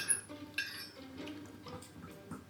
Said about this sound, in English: He's just got a plate and a knife and fork and is pretending to eat invisible food.